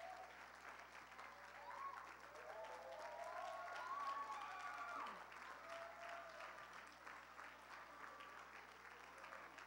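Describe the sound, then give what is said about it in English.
A church audience applauds the Sunday School Department for their treats with steady, dense hand clapping that swells slightly in the middle and then eases, with a few cheers or voices rising faintly through the clapping. “Can we all give these a big hand clap of praise?”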